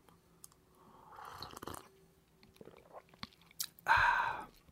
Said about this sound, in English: And I do that a lot on the show, by the way. I sip on coffee.